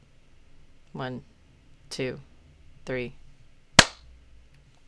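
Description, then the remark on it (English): A voice counts three evenly spaced beats, then a single sharp, loud hand clap snaps out as a sync marker, followed by near silence. “We can just keep clapping, yeah?”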